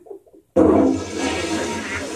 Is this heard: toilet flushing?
yes